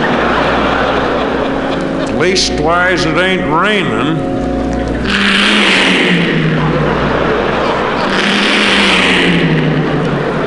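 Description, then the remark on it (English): A man speaks over a steady traffic rumble, then two big semi trucks roar past one after another on a turnpike, each a loud rushing whoosh with a dropping engine drone. “Them semis, they just never let up.”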